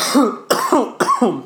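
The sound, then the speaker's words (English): A run of four harsh, raspy coughs in quick succession, evenly spaced about half a second apart, fairly loud, with no talking. “Nah, I'm coughing.”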